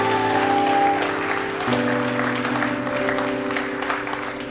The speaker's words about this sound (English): Oh, somebody give Jesus a clap in the house this morning.